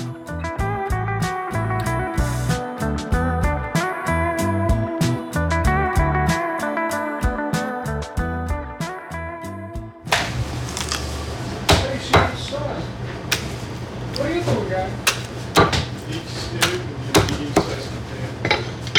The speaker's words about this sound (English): That sound you just heard, that will soon be my family's dinner. It's the sound of a chicken being quartered at Fisher Brothers and Leslie, a kosher butcher